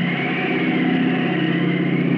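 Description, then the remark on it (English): A steady, droning airplane engine hum with a low, buzzing harmonic tone, holding an even loudness throughout with no voices. “Gradually, the drone of the plane fades, and Tim floats down to the silent space.”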